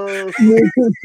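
A person imitates a cow's moo with a few drawn-out, nasal lowing sounds in quick succession, loud, with a brief rise and fall in pitch.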